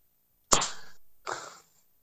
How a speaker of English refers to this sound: What are you leg slapping about?